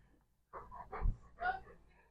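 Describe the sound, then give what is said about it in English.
A dog lets out a few low, grumbling vocal huffs mixed with breathy panting, in three short bursts over about two seconds. “Dude, what are you doing? Why are you booing me?”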